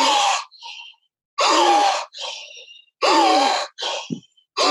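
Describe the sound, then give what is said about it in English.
Loud, sharp gasping inhales, each followed by a shorter, softer breath out, repeating in a steady rhythm about three or four times in a forceful breathing exercise, with no talking. “And there's a bit of a gasp.”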